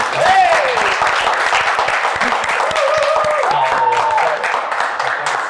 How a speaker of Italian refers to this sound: L'applauso?